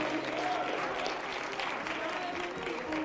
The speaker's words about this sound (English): So you might as well get with me and begin to give God his praise. Come on, clap your hand. Thank the Lord for his goodness.